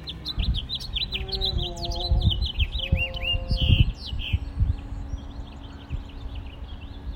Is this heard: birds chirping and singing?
yes